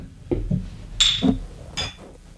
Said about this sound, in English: Glass is clinking. Yeah. You know it's legit. They got a couple beers. Got a beer. Got a little bourbon.